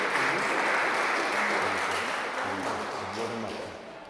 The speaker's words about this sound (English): Now, we've got some wee gifts for the girls, and as we give them out, I think we should give them a round of applause.